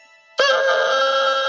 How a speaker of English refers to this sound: Oh my! That's fantastic. What is that? That's my bassoon reed.